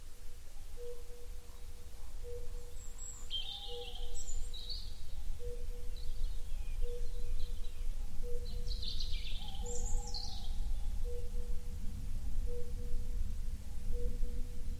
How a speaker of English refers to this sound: Curlew Bubbling Song, Merlin Driver, UK.